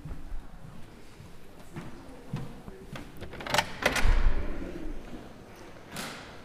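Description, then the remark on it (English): Heavy double doors, both opening at the same time, clunk and thud open, a cluster of knocks and a low rumbling bump in the middle, then a softer whoosh near the end, with faint background ambience throughout. “Those doors are heavy. One door and the other door opens at the same time.”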